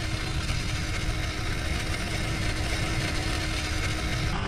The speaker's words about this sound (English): I am in the engine room.